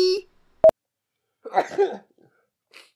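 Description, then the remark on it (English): A single explosive sneeze bursts out, harsh and breathy, about half a second long. A brief sharp click and a short tonal blip come just before it. “God bless you.”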